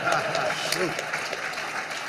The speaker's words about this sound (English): Now, that was good. You're supposed to clap for that.